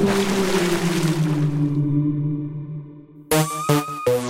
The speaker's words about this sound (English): Hey, there's my boat.